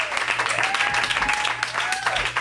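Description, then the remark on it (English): A show audience applauds steadily for the whole stretch for Mike Seaver: a dense, even wash of many hands clapping, with a few rising whoops breaking through the noise. “Everyone, big round of applause for Mike Seaver.”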